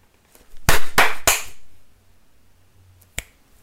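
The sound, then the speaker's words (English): Three loud, sharp hand slaps land in quick, even succession, then after a short pause a single fainter crack follows. No voices are heard. “That was just a hard three because you just hit.”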